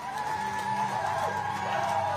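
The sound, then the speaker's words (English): A room full of people at an Osage Nation watch party in Oklahoma on Sunday night cheers and whoops as Lily Gladstone's name is announced as a Golden Globe winner on the televised awards ceremony; a dense, loud wash of overlapping voices with a few high shouts rising above the din. “The room of people cheered as Gladstone's name was announced as they watched the televised awards ceremony.”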